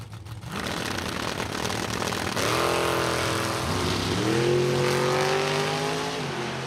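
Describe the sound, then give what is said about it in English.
Drag racing cars, a 2006 American Chassis dragster and a Mustang, roar down the strip in a final round, engines screaming louder and climbing in pitch as they accelerate hard, a loud, continuous blast of engine noise with no talking. “the Mustang's out front, but here comes Shane Pope at the finish line”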